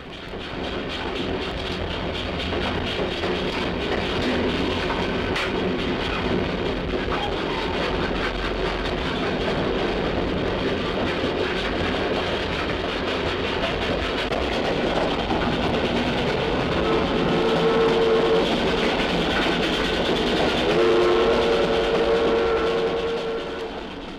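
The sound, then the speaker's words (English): A train pulled by a railroad engine rumbles steadily along the tracks, a loud, continuous roar with clattering wheels and creaking cars, with no talking. “A railroad engine turns its rhythms into power that carries a train rocking across the rails from city to distant city.”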